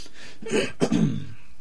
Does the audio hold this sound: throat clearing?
yes